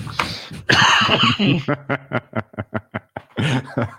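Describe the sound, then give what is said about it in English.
A loud coughing fit: a couple of rough, raspy bursts, then a rapid string of about eight short, sharp coughs in quick rhythm, ending in a final strained hack. “He just brought on a coughing attack for me.”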